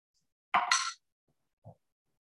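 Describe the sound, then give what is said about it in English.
A different set of dice, rolled in a tabletop role-playing game for a natural 20, rattle and clatter in one short, fairly loud burst, followed a moment later by a single soft knock as they settle. No one speaks. “I'm going to use different dice.”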